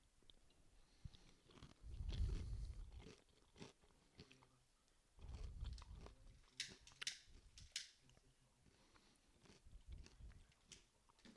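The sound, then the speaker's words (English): Loud crunching on Don Julio tortilla chips, with sharp brittle snaps and chewing in several bursts separated by short pauses; no one speaks. “All they're going to hear now is me lighting a joint and you crunching on chips.”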